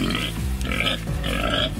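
A pig grunts and snorts loudly and up close, a rough, continuous run of guttural oinks with no pauses and no voices.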